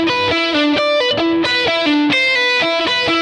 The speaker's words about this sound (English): I'm going to take this lick that I came up with here, put a little reverb on here, and what I'm doing is going...